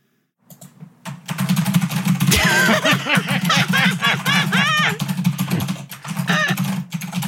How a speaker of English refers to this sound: You're actually fine, unless you get loud sometimes, then you're not. Hold on, will you give us a little bit of your typing?